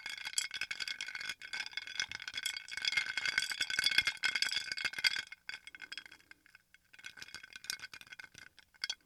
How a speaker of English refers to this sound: Stirring with a metal straw and a glass mason jar, because you know, save the turtles and save the environment, okay?